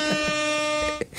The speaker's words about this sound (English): I did the air horn.